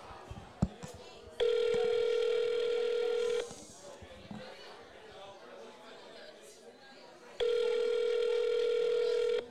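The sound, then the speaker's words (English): A steady electronic ringback tone of an outgoing call to a Chinese restaurant down the street sounds twice, each burst about two seconds long with a long pause between, heard clearly over a faint murmur of background noise. “Answer the phone, goddammit.”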